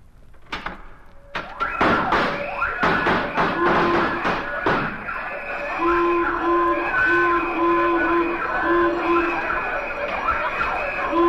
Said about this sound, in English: Mr. Benny, who installed that alarm for you? ….